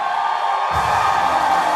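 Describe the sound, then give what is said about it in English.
An audience outside a church service clapping their hands and shouting for the Lord together, a loud, dense roar of many voices that swells fuller and deeper a little under halfway through and holds steady to the end. “Everybody outside, clap your hands for the Lord outside. And give the Lord a shout.”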